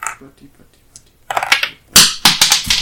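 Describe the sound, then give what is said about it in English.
Dice rattle and clatter across a hard table in a few quick bursts after a quiet moment, with sharp knocks as they tumble and settle, as a player rerolls her ones in a game. “She rerolls her ones.”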